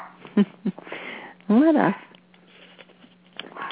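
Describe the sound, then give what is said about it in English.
A small dog guarding a house gives a couple of short sniffing snorts, then a single higher, arching yap, over a quiet background hum. “here we have the little dog who's protecting the house where Kathryn is”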